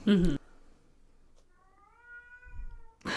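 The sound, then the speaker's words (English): A female cat lets out a long, drawn-out meow that wavers for over a second, with a brief burst of sound at the start and another cutting in at the end. “This cat, y'all. She screams.”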